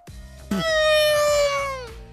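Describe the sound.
A person vocally imitates a Formula 1 car: one loud, buzzy, high-pitched whine held for over a second, its pitch sliding gently downward before cutting off.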